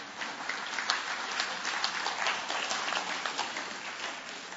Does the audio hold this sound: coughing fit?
no